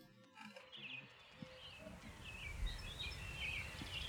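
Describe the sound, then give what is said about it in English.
Light birdsong with scattered high chirps and trills over a soft, rustling outdoor background, opening the intro track of a music recording, with no music yet underneath. “I like birds. Yeah, it's a pleasant way to open this.”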